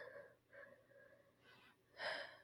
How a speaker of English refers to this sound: I'm just like, I need to blow my nose. I know, I can hear it.